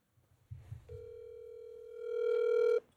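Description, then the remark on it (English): A phone call is placed back to the speaker's mother: a short low rumble, then one steady, buzzy electronic tone held for about two seconds, swelling slightly louder before cutting off. No one speaks. “My mom just called me. Should I call her back on the air?”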